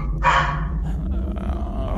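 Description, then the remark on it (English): A dog lets out one sharp, loud bark near the start, followed by a low, continuous rumbling growl that holds steady for the rest of the moment, with no voices present. “The toad man, Freddy the toad man, barks at him, I guess.”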